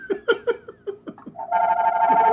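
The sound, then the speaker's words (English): A house phone rings: a quick run of chirpy electronic bursts gives way to a steady, buzzy ringing tone that holds loudly to the end, with no talking. “Who has a fucking house phone that people call?”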